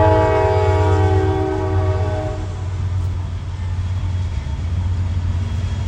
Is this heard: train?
yes